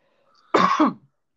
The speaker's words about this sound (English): Oh, sorry. Cough there. Oh, my gosh, Corona. My bad, bro.